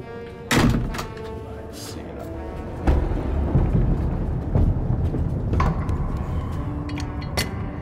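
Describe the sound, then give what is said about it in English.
A large sliding door rumbles and scrapes along its track, punctuated by several loud metallic clanks and thuds, ending with a sharp clack as it is pulled shut and locked with a padlock. “The large sliding door is pulled shut and the padlock is put in place.”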